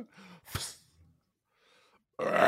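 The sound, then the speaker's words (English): A short, low guttural burp rumbles out, followed by a sharp breathy burst and a brief lull, then a loud rush of noisy breath cuts in at the end. “Oh yeah, that was a good burp.”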